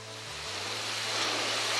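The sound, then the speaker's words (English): Heavy monsoon rain in Thailand, about 200 miles from the Malaysian border, pours down in a dense, steady roaring hiss that swells slightly louder, pounding and bouncing, with a faint low hum beneath it and no voices. “It was so heavy. It just pounds and bounces. I've never ridden in rain like it. I suppose that's monsoon rain.”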